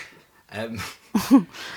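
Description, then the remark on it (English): A dog retches, being sick, in a few guttural, heaving bursts, with throaty gagging and a sharp strained push near the end, fairly loud. “The dog just started being sick.”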